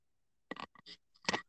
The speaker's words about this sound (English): It's rubbing up against your zipper. Yeah. There we go.